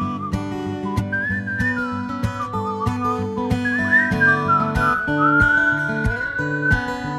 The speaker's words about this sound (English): Let's have a whistle off. Oh, well, here no, no, play the whistle thing again, and we'll see who can whistle the best. Oh, boy. Or the worst.